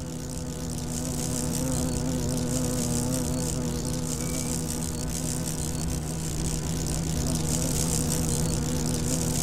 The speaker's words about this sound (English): And as the evening falls and as dusk comes in, you might hear a strange, unearthly drone. And it's the drone of the cockchafer beetle in flight.